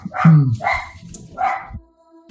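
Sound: dogs barking excitedly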